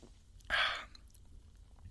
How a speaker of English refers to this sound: Well, I got a lot of foam. It was sort of trying to do a clean up sip.